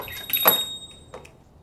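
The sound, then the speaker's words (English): A door opens with a short rattling burst, followed a moment later by a softer second knock, with a faint high ringing tone hanging over it and no one speaking. “They're turning their eyes toward the noise of the door.”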